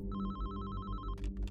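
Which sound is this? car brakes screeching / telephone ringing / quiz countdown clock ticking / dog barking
telephone ringing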